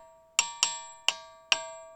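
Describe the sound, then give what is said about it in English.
A ringing rock at the Ringing Rocks is struck five times at an uneven, unhurried pace; each sharp hit leaves a clear metallic, bell-like tone that lingers and overlaps the next blow, fairly loud, with no voices. “So the obvious question that comes to mind here is, why do these rocks make this sound?”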